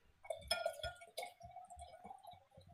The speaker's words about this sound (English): Hold on, I gotta refill my wine glass.